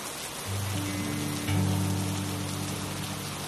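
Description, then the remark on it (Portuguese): Heavy, strong rain falls on the ground, a dense, even hiss of drops hitting the ground with a low hum underneath, continuous throughout with no voices. “Ouvindo o barulho das gotas batendo no chão.”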